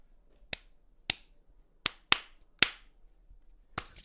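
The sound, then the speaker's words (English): A secret knock rapped on a wooden table: six sharp, crisp knocks in an uneven pattern, two quick pairs among single raps, with no talking in between. “That was the secret knock.”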